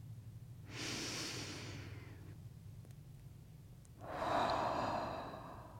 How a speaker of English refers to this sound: Once here, we might just sit and breathe for a bit. Deep breaths, like this.